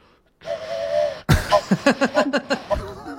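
A voice imitates a mournful train whistle: a steady, mid-pitched held tone, then a sharp burst and a quick run of rhythmic, breathy pulses.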